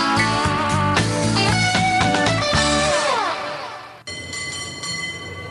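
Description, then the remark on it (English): A cable car rumbles and clanks along with loud metallic ringing and squealing tones, steady for a few seconds before a brief drop and a high whining hum. “A little bit of cable car sound there.”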